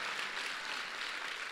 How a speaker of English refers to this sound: somebody clap right now.